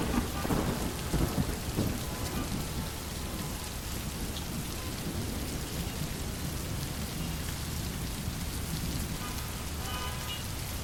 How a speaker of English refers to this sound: Imagine, can you feel yourself standing in the pouring rain right now? Water dripping off your nose and running down your back. But the rain, it's warm and soothing.